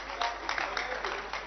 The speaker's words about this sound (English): Clap your hands in your house.